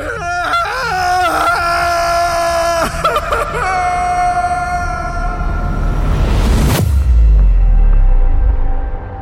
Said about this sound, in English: And all I could do was scream.